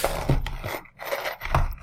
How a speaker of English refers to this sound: Let me pull out my DM dice here. Come on. That's a D12.